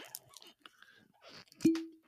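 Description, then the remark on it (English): Soft scraping and crackly handling noises lead into a single weak cork pop from a bottle of Frey Ranch whiskey from Nevada: a short, muted thump followed by a brief low hollow ring that fades out. “Weak cork pop, but whatever.”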